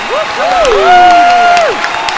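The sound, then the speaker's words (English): On 5FM radio, a crowd cheers and applauds loudly to welcome a new Sunday morning host, with rising and sustained whooping voices riding over a steady wash of clapping that carries on for a couple of seconds. “A host on 5FM, please make some noise for our new Sunday morning 4 to 7 direct from University of Pretoria.”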